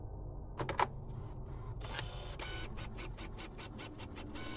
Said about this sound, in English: And back in California, after her husband's death, she would sometimes wake in the night to the sound of the printer in the home office.